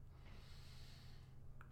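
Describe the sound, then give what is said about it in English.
A long, steady breath drawn in through the nose during a guided breathing exercise, breathing into the belly, lungs and crown; airy with a slight snuffling hiss, lasting under two seconds with no one speaking. “Breathing into our belly, into our lungs, into our crown.”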